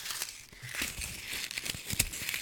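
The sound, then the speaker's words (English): Paper being crumpled and crunched loose on a table, a dense run of crackling, crinkling snaps with sharp spikes scattered through it, no voices. “Today, ladies and gentlemen, we're going to be experiencing crunching paper.”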